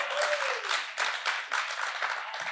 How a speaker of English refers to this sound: Wow, that awakened church, they're cheering during the Ten Commandments.